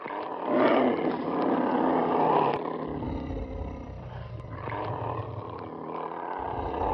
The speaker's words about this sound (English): The Seekers exploded in snarls and roars as the Franklins got into their vehicle, stunned.